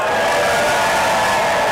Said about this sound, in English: To prove to everyone who is just, like, at work and has headphones in, we actually do have a crowd here. Make some noise for yourself, please.